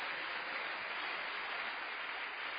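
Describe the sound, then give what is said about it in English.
A crowd claps steadily for the Lord, a dense wash of many hands applauding together without pause for a few seconds, with no voices on top. “It's a good place for you to clap your hands for the Lord.”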